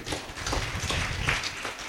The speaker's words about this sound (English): Let's clap for this wonderful family.